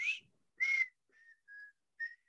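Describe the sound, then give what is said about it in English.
Someone whistles a short, wavering melody of several breathy notes, a bit off-key, with brief pauses between phrases and no talking. “Because if you could pick it from my tuneless whistling, you own it, sir.”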